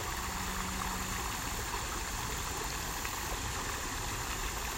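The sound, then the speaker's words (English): Creek water flows in a steady, continuous rush, a broad even hiss with no pauses or voices over it, holding at a constant moderate level throughout. “And we're just going to do some breath work and then listen to the creek for a few minutes.”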